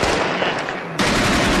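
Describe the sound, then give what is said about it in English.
Dense, continuous burst of rapid gunfire, loud, like sustained machine-gun fire, with a sharp jump in intensity about a second in, added to a news report to accentuate it. “And listen to the timing, by the way, of how they accentuate the report with gunfire.”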